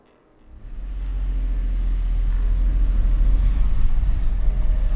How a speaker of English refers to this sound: Every now and then there's an engine that idles so violently it shakes my bed.